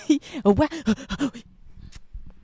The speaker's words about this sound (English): Why are you breathing?